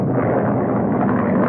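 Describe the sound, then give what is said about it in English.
A tiny single-engine plane, buffeted by a ferocious thunderstorm, drones in a steady, unbroken roar, dense and rumbling with a rough, rushing texture, holding constant loudness throughout with no voices. “His tiny single-engine plane is being buffeted without mercy by a ferocious thunderstorm.”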